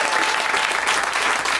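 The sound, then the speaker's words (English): Loud, steady applause from a comedy show audience for two people, dense clapping filling the whole stretch without pause, no voices standing out above it. “A round of applause for these two.”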